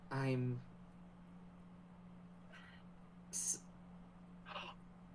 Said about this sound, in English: Don't gasp like that.